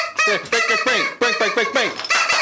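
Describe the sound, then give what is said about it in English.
A person in a studio imitates a chicken with a rapid series of loud squawks, about eight harsh honking cries in quick succession with brief gaps between them. “There's a chicken in the studio, apparently.”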